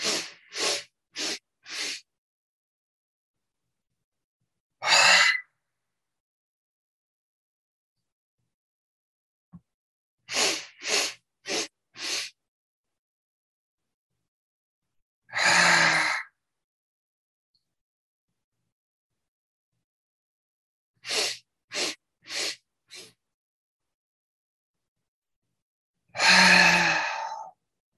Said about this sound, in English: Now we're going to shift the staccato to the inhale.